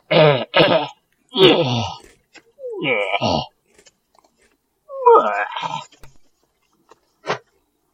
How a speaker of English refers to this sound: Maybe I'll just make some gross sniffling, coughing, wheezing noises, you know. Get them all out now.